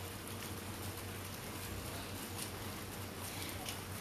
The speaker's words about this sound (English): It's raining right now. It's raining a lot, actually.